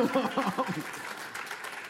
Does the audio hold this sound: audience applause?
yes